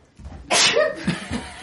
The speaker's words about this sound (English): got up, walked away from the entire thing to sneeze. Just the courtesy to walk away.